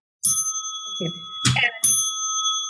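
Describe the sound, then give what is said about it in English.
A bright bell rung from a Schwann's frozen-food delivery truck stopping in a tiny town rings out three times in quick succession, each strike leaving a sustained metallic tone that lingers and overlaps the next. It is loud, with faint low murmuring underneath. “We live in these tiny towns, and a man in a truck with frozen food in the back would drive and stop at the and ring a bell.”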